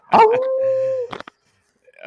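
A dog lets out a steady, drawn-out howl lasting about a second, then a couple of quick, short barks, close up and fairly loud.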